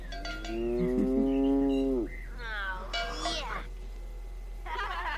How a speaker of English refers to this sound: Yep. Nice cow.